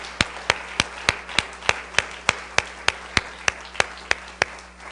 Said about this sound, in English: Would you clap your hands unto the Lord if you believe that?